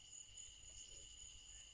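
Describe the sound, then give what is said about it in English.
A steady chorus of crickets chirps continuously, a thin high-pitched trill that never pauses, heard faintly over a low background rumble with no one talking. “Can you hear the crickets?”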